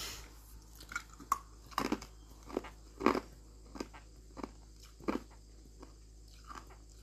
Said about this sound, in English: Why does your teeth squeak when you chew? Because this is ice. It's not my teeth squeaking, it's the ice.